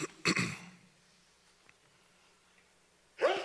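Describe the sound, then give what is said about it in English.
A single sharp, breathy sneeze bursts out, followed by near silence with a faint low hum, then another short breathy burst at the end. “Bless you.”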